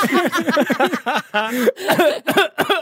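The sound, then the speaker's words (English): A voice imitates raspy coughing: a quick run of short, rough hacking bursts, then a few longer, strained coughs, all fairly loud. “I can't tell if that basketball was just going to fall on its own anyway, or if this is a sign from you, but I can hear your raspy, frozen coughing.”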